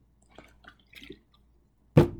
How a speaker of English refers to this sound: That was me putting my water bottle on the table.